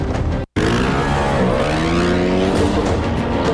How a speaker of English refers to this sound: And yeah, you should take a look at this fucking dumb motorcycle fight.